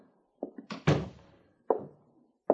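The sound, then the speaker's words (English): A sergeant closes the door of a post commander's office: a solid thunk, preceded by a few light handle rattles and followed by a softer knock or two, with no one talking. “Close the door, Sergeant.”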